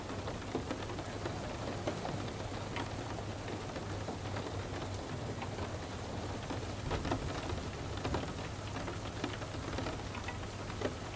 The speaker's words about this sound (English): Every roll of thunder distracts and reminds you to let go more in reassurance.